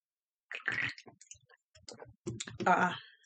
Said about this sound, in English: Let me take a sip of my bang.